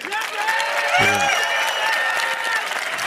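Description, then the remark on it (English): A large audience in the Amazon arena claps steadily for Coinbase throughout, a dense, sustained wash of applause mixed with scattered cheers and whistles, loud and filling the space from start to finish. “That was better than the Amazon clap.”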